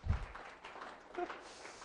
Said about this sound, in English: Do you guys like learning? Give yourself a clap because you like learning.